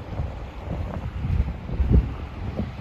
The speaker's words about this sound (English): Guys, there's actually no sound down here other than nature. And when Remy wants to bark at a stone, but you can hear the water and you can hear the wind.